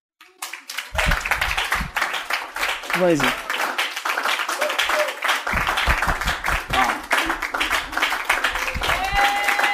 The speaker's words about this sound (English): Clap for me